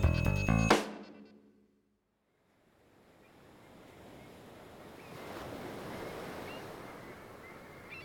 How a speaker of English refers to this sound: We're racing over water, ocean, as far as the eye can see, but an island approaches. We are in the western reaches. Water laps at us as we rise and fall just above the waves, moving as fast as a bird.